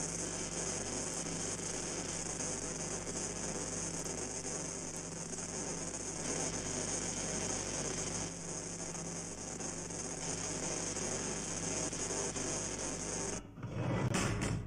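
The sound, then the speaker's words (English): A steady, fairly loud drilling sound grinds on continuously over a low motor hum, with a raspy texture throughout, then briefly changes pitch near the end. No one speaks. “Dang, he's just drilling through there, though.”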